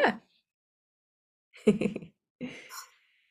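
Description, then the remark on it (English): A brief breathy sound, then a pause and a sneeze: a sharp, noisy burst followed by a second hissing, airy release, with no talking around it. “Well, I have to sneeze. Excuse me.”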